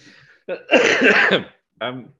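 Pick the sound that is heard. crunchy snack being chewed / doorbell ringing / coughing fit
coughing fit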